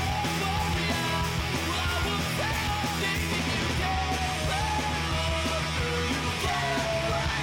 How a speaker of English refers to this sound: Okay, there's yelling. Okay.